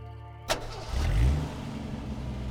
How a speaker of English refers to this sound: As soon as Fen heard Chung's car start, she ran to his study and made a beeline for the teak writing desk.